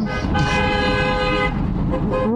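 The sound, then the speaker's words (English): A loud, sustained truck horn blares for a couple of seconds over the rumble of a truck going by, dominating the scene. “It's a truck going by.”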